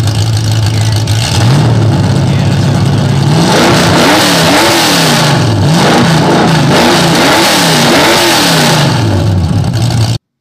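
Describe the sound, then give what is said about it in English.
A carbureted car engine catches and settles into a low rumble, then revs repeatedly in loud, rising and falling bursts, with no talking over it. “you got that carburetor on this car? We can say I do. Let's on, boys. Fire it up”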